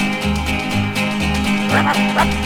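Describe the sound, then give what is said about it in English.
Dog barks yap in short bursts on a spoof comedy skiffle record, over an upbeat, bouncing skiffle band with a steady thumping bass, the barks landing loud within the busy music. “Skiffle soon spawned spoof comedy records. This one name checks … and …. It's the … with the ….”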